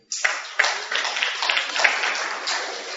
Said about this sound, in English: Clap for him.